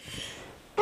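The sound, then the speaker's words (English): A single sneeze: a brief breathy intake followed by a sudden, loud explosive burst right at the end. No one speaks. “Bless you.”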